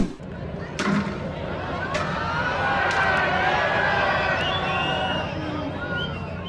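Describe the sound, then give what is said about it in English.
A tennis player repeatedly whacks the umpire's chair with his racket during an on-court outburst at a tournament in Mexico, narrowly missing the umpire's legs: about five sharp, loud cracks at uneven intervals, set against a continuous hubbub of crowd voices and murmuring. “He not only called the umpire an effing idiot, but also whacked the umpire's chair several times with his racket, narrowly missing the umpire's legs.”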